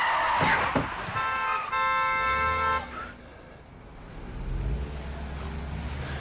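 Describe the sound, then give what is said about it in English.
Cars honk as two cars almost collide at an intersection: a couple of quick sharp bursts, then one long, loud sustained horn blast, fading into the low rumble of passing traffic. “And then he gets the shit scared out of him when two cars almost collide at the intersection outside.”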